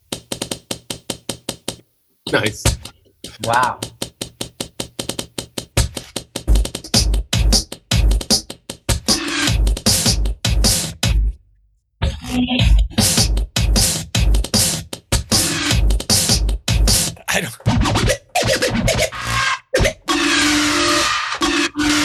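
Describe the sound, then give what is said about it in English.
Dense, irregular crackling like paper being ripped, a rapid stream of sharp dry pops and clicks with brief pauses, fairly loud throughout, with a few short spoken remarks. “Now these other sounds, I swear there's like it sounds like ripping paper, but like as if somebody's ripping paper like in my ear canal.”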